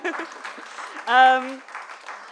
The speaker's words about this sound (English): Look how pretty this is. Okay. Oh, yeah. Clap for prettiness.